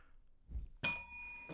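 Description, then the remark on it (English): A single bright bell strike rings out sharply during a trivia quiz game, its clear metallic tone sustaining with steady overtones before a second tap begins at the very end. “You don't have to ring the bell”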